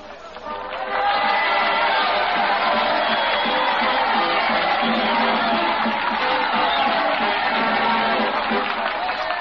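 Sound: crowd cheering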